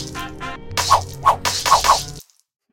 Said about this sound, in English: Yeah, thanks for whipping that record off. I had to do something, and the closest thing on me was the whip.